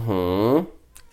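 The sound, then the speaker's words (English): A single clear meow from Kitty, a cat, with a rising-then-falling pitch lasting about half a second, followed by a faint click and quiet background sound. “There's Kitty. Kitty feels Kitty the same way.”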